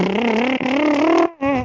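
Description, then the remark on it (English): A voiced lip trill done as a vocal exercise in a singing lesson, a fluttering motor-like buzz held at a steady mid pitch with slight wavers, breaking off briefly near the end before resuming for a short final burst. “And wait, I think I can do the lip drill.”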